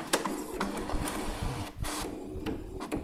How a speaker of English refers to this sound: I don't know what that is, but it's... Is that a printer? Is that a printer?